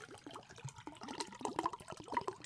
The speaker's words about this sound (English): hold on, I'm pouring more vodka.